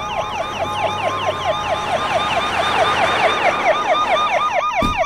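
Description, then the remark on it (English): Police patrol car sirens wail in fast, repeating yelps as the cars arrive at La Casa Rosa, house of Miami Mayor Esteban Calderón, several overlapping tones growing louder as the vehicles draw near, with a steady traffic rumble underneath and a sharp click near the end. “And here come the patrol cars, either to escort him to the stage where he'll be giving his victory speech, or to arrest him.”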